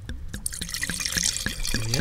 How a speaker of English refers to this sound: Holy shit. Got half in the glass and half on the table.